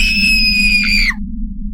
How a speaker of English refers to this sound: Across the table from her, where the stranger's feet should be, she saw hooves. The cloven feet shuffled slightly, and she screamed.